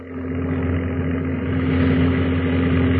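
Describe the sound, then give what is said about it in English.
A single Japanese Zero fighter's engine drones steadily for the whole stretch, a dense low-pitched rumble with a strong humming tone, growing slightly louder toward the end, with no voices. “There's a plane. Zero. Look at that silhouette. She's a zero. And all alone.”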